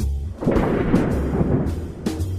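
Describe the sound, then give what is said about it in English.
A sheet of aluminum foil being shaken to imitate thunder: a loud, continuous rumbling roar with crackling texture and a few sharper flutters, lasting about two seconds with no talking. “Did you say a sheet of aluminum foil?”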